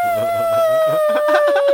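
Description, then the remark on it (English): A voice imitates balloons deflating and flying off: a steady, high, whistling squeal that glides slowly downward in pitch for about two seconds, with a rougher vocal rumble underneath. “And both the balloons go.”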